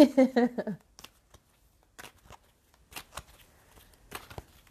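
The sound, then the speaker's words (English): A Daily Crystal Inspiration oracle card deck being shuffled in a few short, crisp bursts of papery riffling, fairly quiet, after a brief voiced sound at the start. “Almost dropped all those. Okay, but we got one card that came out from the Daily Crystal Inspiration, and it is Malachite.”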